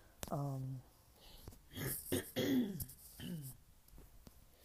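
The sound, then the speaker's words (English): A fairly loud throat clearing: a short voiced rasp followed by a couple of rough, guttural bursts, with a brief gap between them and no words spoken. “Well, excuse me, clearing my throat.”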